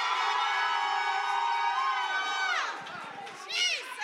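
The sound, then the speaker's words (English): A large crowd shouts and cheers loudly in a sustained roar, voices rising and overlapping, with a few higher individual shouts cutting through near the end. “Now, will you shout about that?”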